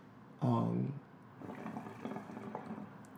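A brief, loud burst of hookah water bubbling as people smoke a hookah, gurgling for about half a second, then fading into a quieter murmur of background voices.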